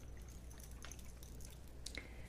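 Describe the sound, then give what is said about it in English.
Soft drips of water infused with essential oils and charged crystals, three or four scattered plinks with the last one ringing a little brighter, quiet over a low steady hum, no voices. “This is an infused water with essential oils and charged crystals.”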